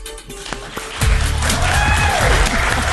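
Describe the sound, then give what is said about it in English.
A live early morning crowd at Purcell Farms in Sylacauga, Alabama, bursts into steady, loud applause after a quieter opening, with clapping filling the space and a few scattered whoops or cheers rising over it. “All right, so here we are live at Purcell Farms in Sylacauga, Alabama, with an early morning crowd.”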